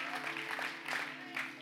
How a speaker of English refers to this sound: I only got half the room clapping.